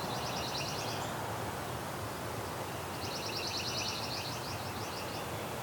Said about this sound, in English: we may have pine warbler in here. Maybe. Not there, because it fades in and out. It's not a straight even trill, but it has that fade in out quality, and it's in a pine tree. That helps too.